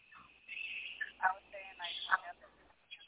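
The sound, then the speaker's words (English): A phone rings with a muffled, tinny melodic tone. Short chiming bursts repeat roughly every second at moderate volume, with faint background murmur. “Oh, Lord, hear her phone go.”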